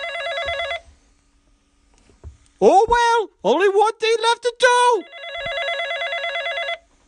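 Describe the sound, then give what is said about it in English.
A telephone bell rings in two bursts, one at the start and one near the end, bright and fairly loud, with a man speaking briefly in the quiet gap between them. “I don't want your phone to ring.”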